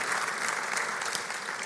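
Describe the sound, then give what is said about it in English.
A crowd claps to welcome guests in a dense, sustained round of applause, with many hands blending into a continuous rattling wash at an even loudness throughout. “Should we just say a warm welcome and give them a round of applause?”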